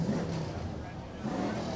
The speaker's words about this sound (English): Here comes your GTO. Little GTO. Wind them up. Let's hear them go. It's a 67 GTO.